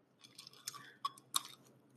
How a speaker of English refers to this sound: First, I need a sip of my hydration caffeination, though. She's an iced latte with almond milk.